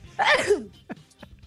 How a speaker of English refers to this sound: You guys, that was the weirdest thing ever. That sneeze literally came out of nowhere.